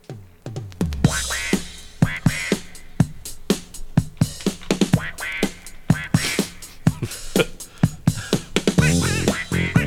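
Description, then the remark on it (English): An upbeat disco track from a French record, the first song on side two, with a steady thumping beat. Over it a nasal, quacking duck-like voice sings loud and up front, a human voice imitating a duck rather than a real bird. “It's the first song on side two. ….”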